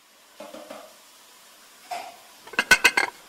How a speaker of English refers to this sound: And now Frank Skinner. Eating a chicken dinner.